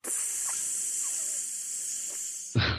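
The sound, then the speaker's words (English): A video game creeper hisses in one loud, steady, high-pitched rush lasting over two seconds, then cuts off abruptly into a sudden low, booming burst at the very end. “But, the creeper sound?”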